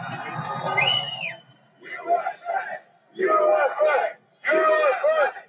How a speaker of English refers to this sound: So we got a bunch of idiots screaming USA, of course, because reasons. There's a crowd surge heading east.